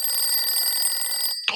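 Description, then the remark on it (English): A telephone rings with an emergency call to Sheriff Labrador from Mr. Buffalo, one evening: a loud, high, rapidly trilling bell in one continuous burst, then cuts off abruptly, followed by a brief clatter. No one speaks. “One evening, Sheriff Labrador received an emergency call from Mr.”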